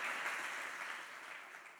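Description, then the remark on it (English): An audience at a bilingual Spanish-English church service applauds to give the Lord a hand, with dense, steady clapping that fades only slightly over a couple of seconds, a broad crackling wash of many hands with no voices on top. “Let's give the Lord a hand and let's cheer up.”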